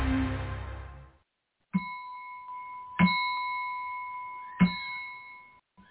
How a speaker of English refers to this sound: Did you hear those clear crystal tones? Isn't that beautiful? How it goes all through the air like this and reaching you wherever you are.